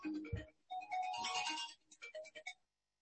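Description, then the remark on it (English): A phone rings with a short melodic ringtone, a quick run of bright electronic notes lasting a couple of seconds before cutting off abruptly. It is fairly quiet, with no talking. “Pardon me, I'm going to turn off my phone.”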